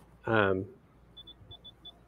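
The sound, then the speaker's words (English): A brief burst of voice, then a run of short, high-pitched electronic beeps, five at slightly uneven intervals, each an IntelliKeys keyboard key press triggering a small tone and LED, sent back to the device by CircuitPython code; fairly quiet. “It's beeping.”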